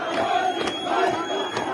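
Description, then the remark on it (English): A large crowd of demonstrators in Iran's southwestern Khuzestan province, protesting a severe water shortage, shouting and chanting together: a dense, loud wall of voices with a few sharp cries rising out of the roar. No single voice stands apart. “crowds of demonstrators have been met with a violent response from security forces”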